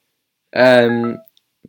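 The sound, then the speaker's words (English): A single short, steady electronic buzz from a new mobile phone's notification lasts under a second at moderate loudness, followed by a few faint clicks. “I got a notification.”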